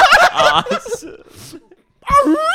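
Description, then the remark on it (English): A warbling, gobbling call of a film creature, like a bird crossed with a lizard, loud, in two bursts separated by a brief near-silent pause. “Oh, yeah, the creature! What was that? Was it like it was a bird and a bear?”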